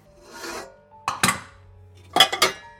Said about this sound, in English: Metal clanked and banged, but within a few moments, she had ripped our side of the doorknob off and slipped it into her pocket.